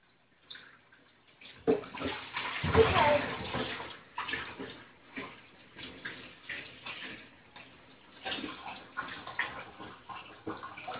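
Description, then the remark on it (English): Steady running water splashes with irregular clatters and clinks as a hot dog vendor's cleanup man in Mississippi washes and rinses dishes, louder around the middle and fading into softer bursts toward the end. “I'm talking like washing the dishes like a pro, rinsing them, washing them, diaper and all.”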